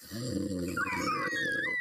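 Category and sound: vocal imitation, person imitating a snore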